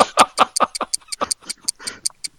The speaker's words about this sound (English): But is that ticking that I hear